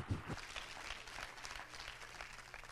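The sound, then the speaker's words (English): An audience clapping their hands together during a church sermon, for the promise that Jesus Christ is the chief stone, a dense, steady patter of many claps spreading broadly across the mix, with low tones underneath and no voices speaking. “Why don't we clap our hands right now for the promise that Jesus Christ is that chief stone.”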